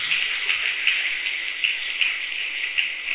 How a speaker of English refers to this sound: Yes, yes, yes, yes. Keep clapping for the Lord. Celebrate Him. Amen. Clap your hands.